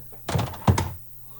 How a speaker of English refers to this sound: I'm just knocking stuff down over here. Y'all hearing noise? Did you just fall out of your chair? No. I'm just trying to make sure things are plugged up and plugged in over here at the podcast studio on my end.